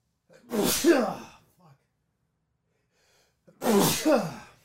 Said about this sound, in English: Oh, shnikey. I'm going to sneeze.